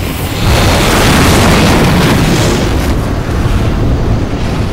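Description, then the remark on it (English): The ship Yahagi explodes just after slipping below the water, in a submarine eruption that sends a ball of black up out of the sea, crackling into white-orange flame. After a brief pause, a loud, sustained roar of deep rumbling and crackling bursts barely fades over several seconds, with no voices. “Just after slipping below the water, she explodes in a submarine volcanic eruption.”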